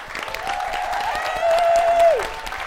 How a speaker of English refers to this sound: And staying in the room with us tonight, and can you start clapping in this fucking massive room, is the comedian Nish Kumar.